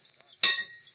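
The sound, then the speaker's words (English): A battered horseshoe strikes a metal stake with a single bright clink, its ringing tone lingering and fading away, with no talking around it. “He spotted me and stood there swinging a battered horseshoe in each hand while I walked up to him.”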